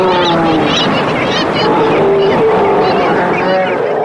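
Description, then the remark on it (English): A dense, loud chorus of Steller sea lions of different ages and sexes, the males' deep guttural roars overlapping with higher, wavering bleats from pups calling to their mothers for identification, continuously without a pause. “You will hear pups who will bleat to the mother for identification.”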